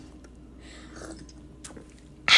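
Someone takes a gulp of a drink after a toast: soft, wet sipping and swallowing noises, a small click, then an abrupt loud breathy burst at the end. No talking.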